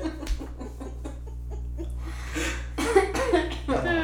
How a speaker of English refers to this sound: There was not a lot of coughing in this episode. I just realized as I coughed, we're getting healthier.